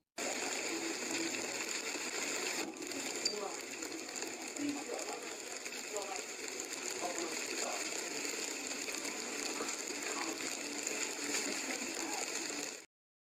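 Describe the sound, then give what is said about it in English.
A dense, constant clatter of hail pelting lake water during a hailstorm, countless sharp splashes and ticks blending into a loud, hissing roar that holds steady from start to finish with no voices. “I'm going to play this clip, dude, of the hailstorm while I get Lance in here.”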